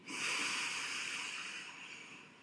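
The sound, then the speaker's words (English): A deep, airy breath taken during a guided breathing exercise, a soft steady rush of air lasting a couple of seconds before gently tapering off, with no talking. “Can you breathe into that right now? Take a breath.”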